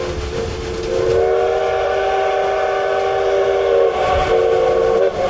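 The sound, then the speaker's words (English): A steam train whistle blows in one long, loud, sustained blast with a steady chord-like tone, briefly dipping near the end before resuming, over low rumbling rail noise. “Blow the whistle again.”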